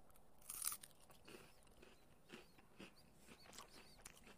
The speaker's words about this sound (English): He's chewing. He's not dying, which is a good sign. But he's thinking.